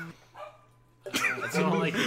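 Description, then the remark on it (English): After a second of near-quiet with a low steady hum, a dog lets out two loud, sharp, harmonically rich barks in quick succession. “My dog!”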